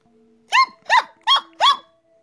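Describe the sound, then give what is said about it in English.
A dog barks four times in a steady, evenly spaced series, each bark loud and sharp, over a faint low background hum with no one speaking. “I suddenly realized where the dog had taken me.”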